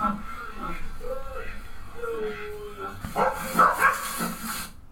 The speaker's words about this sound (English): Those aren't very big fucking pig dogs. No, not at all.